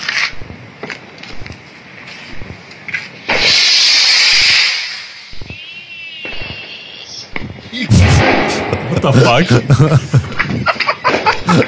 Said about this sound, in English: Oh, this is a firework, I think. Just a nice, you know, celebration.